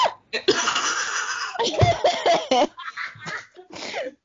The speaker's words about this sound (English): That sneeze been building up for a long time.